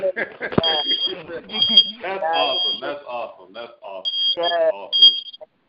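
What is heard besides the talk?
alarm beeping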